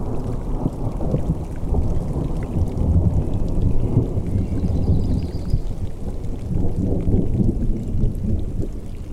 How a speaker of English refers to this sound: The clouds are gathering to the east. A storm is approaching.